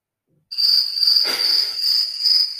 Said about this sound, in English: Sorry, just so everybody knows, they are mountain crickets as well.